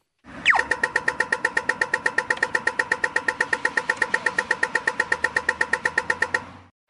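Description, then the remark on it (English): A pedestrian crossing signal gives a sharp laser-like zap, then a rapid, steady stream of loud electronic ticks repeating about six times a second, with no talking. “We'll leave you with the crosswalk sound effect just to put you in a bad mood.”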